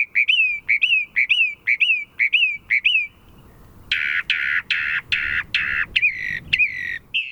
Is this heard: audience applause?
no